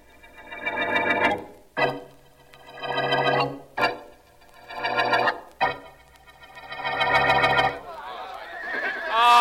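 Several horses whinny loudly and repeatedly, long shrill neighs broken by brief sharp knocks like hooves shifting, with a rougher snorting neigh trailing at the end; the horses are kept for a scene being recorded on a microphone.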